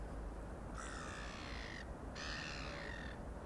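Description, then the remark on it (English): Two long, harsh caws from a crow ring out one after another, each lasting about a second, over a steady low outdoor rumble with no voices. “Yes, those birds are cheering you on too.”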